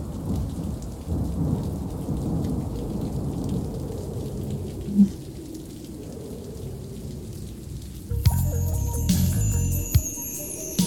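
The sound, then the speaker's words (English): Steady rain falls outside, hissing throughout, layered over a deep, rolling rumble of thunder. Near the end, a bright tonal chiming sound briefly joins the downpour. “Open up the windows. It's raining outside.”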